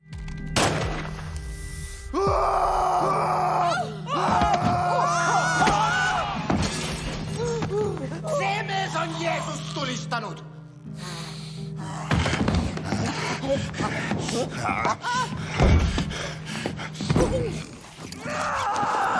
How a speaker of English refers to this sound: In both times, and you guys probably noticed this too, they used the plague pig sound in those scenes. So let me play through that, and then I kind of have a question about this.